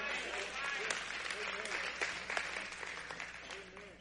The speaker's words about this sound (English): It's okay to clap. Y'all can clap for that.